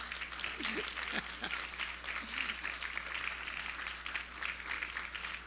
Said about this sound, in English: Give them a nice big round of applause.